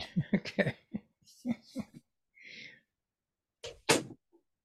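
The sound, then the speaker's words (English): A door is pushed shut with a short, fairly loud thud, following a brief creak and some muffled movement and voice-like sounds. “Okay, I'm gonna shut the door for a moment.”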